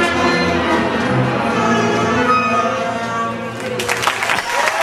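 A sustained, loud musical chord rings out, and near the end a burst of audience applause, a standing ovation, breaks in and grows over the fading music.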